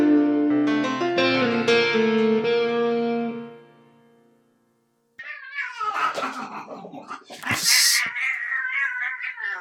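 cat meowing

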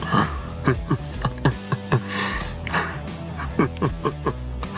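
dogs barking and whimpering

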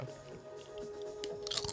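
crunchy food being chewed

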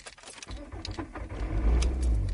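car engine starting up

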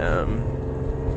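car interior noise

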